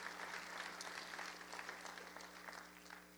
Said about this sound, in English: Come on, just clap those hands one time right there and thank the Lord for the reading of his word.